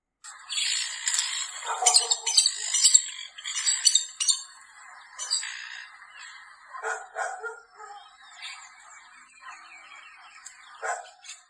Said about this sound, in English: So those are some Brazilian birds. I can't tell you the species. I'm not good when it comes to south of the equator birds, but they sound pretty cool. I think I heard a dog bird barking in there too.